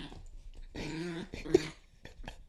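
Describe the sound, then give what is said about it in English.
A dog lets out a low, rumbling growl that rises into a strained whine, followed by a few short huffs and snorts before trailing off. “Man, this dog is wilding right now.”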